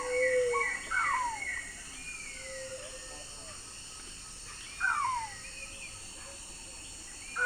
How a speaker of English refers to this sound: Quite a mix of sound. The soft squeals of a little cuckoo. The repeated musical notes of a black-tailed trogon, the song of a white-shouldered antbird, and the soft coos of two pale-vented pigeons.